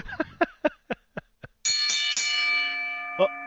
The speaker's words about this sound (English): Payback trivia, Dan, ring the bell.